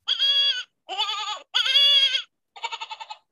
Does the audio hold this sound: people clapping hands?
no